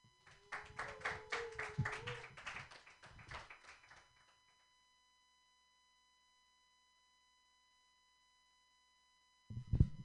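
A stand-up comedy audience in San Francisco claps for the next comedian, a dense patter of many hands that swells briefly, then thins and fades out after about four seconds, leaving silence before a short sound at the very end.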